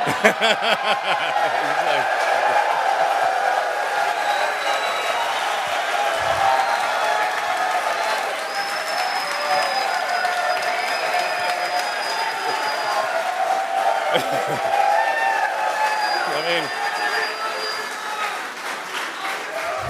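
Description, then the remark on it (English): A large crowd claps and cheers steadily and loudly for the whole stretch, with scattered whoops and shouts rising above the dense applause. “This is the best crowd, I mean.”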